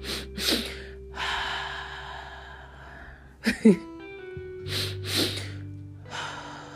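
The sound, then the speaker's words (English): Two quick, sharp sniffs through the nose followed by a long, airy exhale through the mouth, a physiological sigh breathing exercise, the pattern repeating over a faint steady hum. “Double inhale through your nose. Long exhale through your mouth.”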